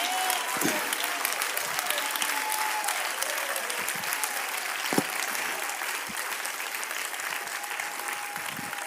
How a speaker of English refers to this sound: Clap your hands to the Lord right now. Come on, clap your hands to the Lord Jesus.